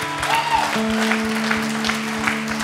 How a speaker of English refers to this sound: Come on, give a round of applause for that today.